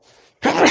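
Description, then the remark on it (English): After a brief hush, a single sudden, loud sneeze bursts out, sharp and breathy, filling the rest of the moment. “Bless you, good sir.”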